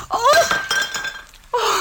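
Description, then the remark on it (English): A platter dropped while washing dishes smashes and shatters with a bright, ringing crash whose tones fade over a second, followed by a second burst of clattering fragments near the end. No voices. “Here's the platter and be careful.”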